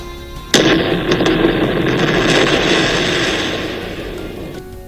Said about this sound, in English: Oh my gosh, that was a huge explosion. It was horrendous. How do you think this affected the people around it? I bet the ground was vibrating, there was rocks flying everywhere, and probably fumes and dust.